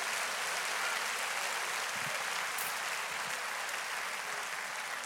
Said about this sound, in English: Would you let's take a moment and clap your hands and give praise to God?